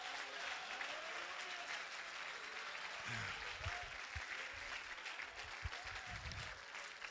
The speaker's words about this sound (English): Clap your hands, all ye people, and make a joyful noise unto the Lord.